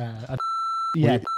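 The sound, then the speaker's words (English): Two steady censor beeps, each a flat pure tone, cutting in right after bursts of speech; the first lasts about half a second, the second is shorter and fairly loud. “I can give you a beep.”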